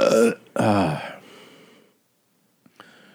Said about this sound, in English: I heard it. Don't worry. Sometimes when you burp and I don't react right away, you kind of look at me.